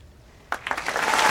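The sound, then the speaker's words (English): Applause from a crowd on its feet bursts in after a brief quiet moment following a stage performance, a dense spray of claps that swells and keeps building in loudness, with no voices heard. “The crowd is on their feet, showering these new superstars with love as I narrate!”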